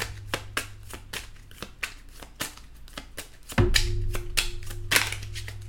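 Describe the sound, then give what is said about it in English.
A deck of Under the Roses oracle cards being shuffled to the side of a laptop, a rapid series of crisp riffling snaps and slaps, with a low steady hum underneath and no talking. “And I'm shuffling to the side here because obviously my laptop is in front of me and the cards are to my left.”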